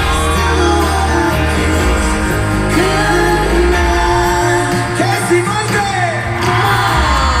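A large concert crowd cheers and yells nonstop, with high-pitched screams and whoops rising over a dense, loud roar that fills the whole stretch.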